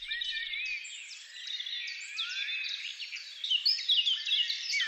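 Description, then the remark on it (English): A dense early-morning chorus of songbirds in hedgerows and fields in southeast France near Brest, with a blackbird singing loudly among them: overlapping bright whistles and chirps run continuously and steadily, swelling a little toward the end, with no talking. “You can distinguish a blackbird singing loudly to wake up the world, and a church bell tolling.”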